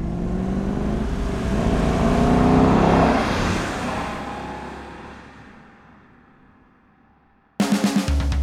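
A car engine revs up loudly, then pulls away and fades steadily before a sudden, different burst of sound cuts in at the end.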